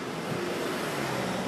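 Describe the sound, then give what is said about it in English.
Morning street traffic on Marylebone High Street on a Thursday: delivery vehicles and taxis running diesel engines, a Porsche with a loud petrol engine, and bicycles. A steady, even wash of road noise with a low rumble underneath, holding constant throughout without distinct individual vehicles or voices standing out. “Marylebone High Street on a Thursday morning”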